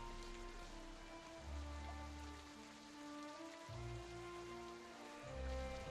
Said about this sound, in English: You barely even see anyone out in the stream and the streets between the darkness and the pouring rain. And make no mistake, this is pouring rain.